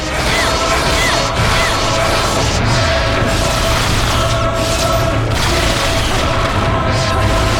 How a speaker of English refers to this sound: And we're starting at the legs and we're smashing up, going up the legs. Oh, come on. We got the legs done.